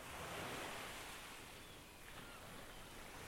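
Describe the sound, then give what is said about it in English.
Steady ocean surf crashing on a beach fills the scene with a broad, continuous wash of noise, rising slightly then easing as waves roll in and draw back, with no voices present. “Listen to the sound of the waves crash on the beach.”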